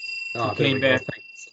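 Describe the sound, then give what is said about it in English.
A voice imitates a bell ringing, two quick sung "ding" tones, with faint steady high-pitched tones droning in the background. “Ding, ding. I don't have the bell over here.”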